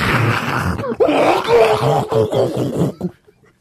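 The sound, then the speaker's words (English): A person vocally imitates a loud flushing toilet, a roaring, gurgling whoosh with groan-like swells lasting about three seconds before cutting off into quiet. “They must be really loud toilets. Like, we think we have loud toilets, like, on an airplane.”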